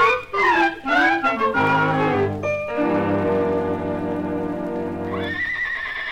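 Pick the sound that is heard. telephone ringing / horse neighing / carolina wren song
horse neighing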